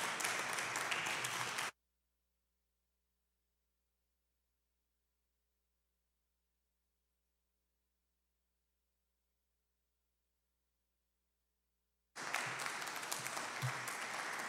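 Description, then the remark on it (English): Two short bursts of dense audience applause at Mosque Marian welcoming the student minister back to the rostrum, a steady crackling wash of many hands clapping, separated by a long stretch of complete silence. No one speaks. “Please welcome him with a round of applause.”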